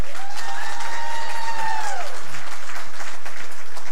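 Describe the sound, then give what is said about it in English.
An audience applauds as a vote for who has the ugliest entry in a contest, with dense, steady clapping for about four seconds, while a long high whoop rides above the clapping before sliding downward and fading out. “I'm just gonna say we're gonna do applause.”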